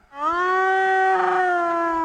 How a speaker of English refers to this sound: Yeah, it was a laughing hyena.